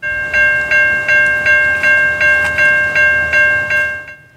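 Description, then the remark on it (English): A CN freight train, stopped for several hours by a mechanical problem at the Piper Avenue entrance to Burnaby Lake Park in Burnaby, BC, Canada: a loud, steady ringing tone that pulses in a regular rhythm, roughly three beats a second, over a low rumble, with no voices. “This was a CN freight train that stopped at the Piper Avenue entrance to Burnaby Lake Park for several hours because of a mechanical problem.”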